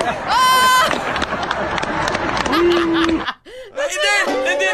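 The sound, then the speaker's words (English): A large graduation audience boos loudly at the valedictorian's speech, with overlapping voices and drawn-out low 'boo' tones. The noise breaks off briefly near the end, then the jeering swells back up. “In his own graduation speech where he's the valedictorian, then all of a sudden the audience turns on him and starts booing.”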